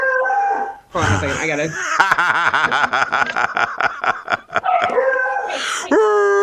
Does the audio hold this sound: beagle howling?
yes